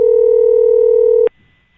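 A steady telephone dial tone hums loudly for over a second, then cuts off abruptly as if a key were pressed, leaving only faint background noise.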